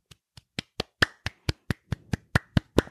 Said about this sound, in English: Clap, clap, clap.